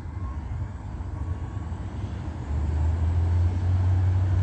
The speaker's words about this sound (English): OmniTrans, bus number 1268, crossing path, driving westbound on Holt Boulevard. And they are doing so at 8:21 a.m.